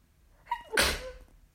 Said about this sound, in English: Excuse me, I'm about to sneeze.